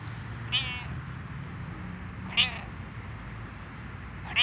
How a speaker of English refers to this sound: Oh, are you meowing?